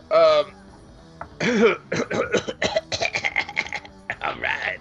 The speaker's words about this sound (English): All right. It's the cough to get you off. But it's the coffin they carry you off in.